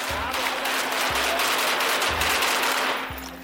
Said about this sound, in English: I drift off and get a surprisingly good night's sleep, until I'm woken by the sound of gunfire. Only this time, it's closer.